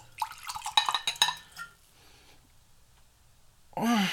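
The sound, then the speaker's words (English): Peach schnapps gurgles and splashes into a glass for tasting for about a second and a half, with a couple of bright clinks, followed by near-silence and a short voiced exhale at the end. “I'm going to pour a little bit in a glass.”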